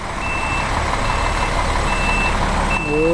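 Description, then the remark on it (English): A bus backing up outside, its reversal alarm sounding four steady, evenly spaced beeps over a constant low engine rumble. “Boy, I see that bus sitting right outside.”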